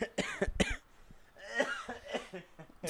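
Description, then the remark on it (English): A burst of harsh coughing, several quick rasping coughs in a row, then a pause and another ragged round of coughs trailing off. “You're making me cough.”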